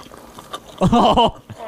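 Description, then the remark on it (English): ASMR recording of wet chewing and lip-smacking noises, faint sticky clicks at first, then a dense, louder burst of squelchy mouth sounds before trailing off into softer smacks. “Wait, let Kristen listen to the chewing for a little while.”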